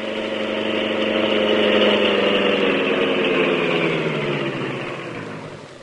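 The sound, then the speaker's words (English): The Green Hornet's sleek black car, stopped in the court outside Conway's study, idles steadily with a low, rumbling hum and dense harmonic drone, holding a constant loud level before easing off slightly at the end. No voices are heard. “Wait here in the car, Cato.”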